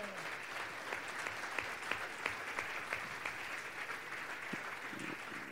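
Steady applause from an audience at a Church Politics gathering before a march, given to a speaker called up front, many hands clapping in a dense, continuous patter that holds at an even, moderate level for several seconds with no voices standing out.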